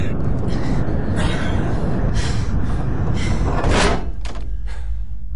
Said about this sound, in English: Can't imagine that lock is going to hold for long. Sensors will have shown this hatch opening. They'll send someone down to check it.